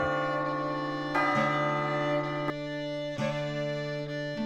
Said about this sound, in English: There's that bell again, and that means that this is the end of Chapter 3.